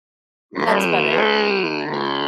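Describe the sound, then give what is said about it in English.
A man's voice imitates a Harley motorcycle engine with a sustained, low rumbling drone, starting abruptly and holding steady at a loud level with slight wavering pitch for about two seconds. “Let me do my Harley. Hang on. Not Harley Quinn. Harley.”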